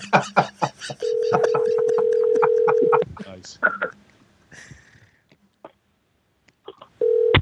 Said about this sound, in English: Please stand by, ladies and gentlemen, for the phone call to be connected. There we go.